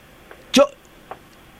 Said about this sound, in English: Listen, can you hear her breathing?